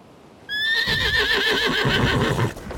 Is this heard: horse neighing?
yes